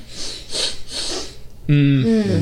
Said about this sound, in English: Yeah, like I'm making them here, but we're in the middle of New York City. Let me sniff the air around those quotes.